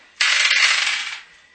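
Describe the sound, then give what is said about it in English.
Dice rattle and clatter across a hard tabletop in one sustained roll of about a second, bright, then come to rest; the dice are rolled to roll a contact in a game. No voices are heard. “I'm rolling contacts for something. What are you doing? I rolled well.”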